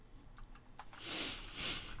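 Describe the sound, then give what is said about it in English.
A few sharp, quiet key clicks, then a short flurry of soft, rapid tapping on a computer keyboard, with no voices. “That's what popped up when I was typing Jeff Goldblum.”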